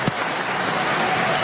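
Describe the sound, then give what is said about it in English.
A large stadium crowd applauding, a dense, steady wash of clapping that holds at an even, fairly loud level throughout, with no clear voices standing out. “And of course, this stadium, as the applause goes on, was her happy place.”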